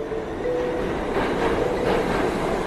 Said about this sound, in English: A year ago, my day would start with a train ride alongside thousands of fellow commuters into Manhattan.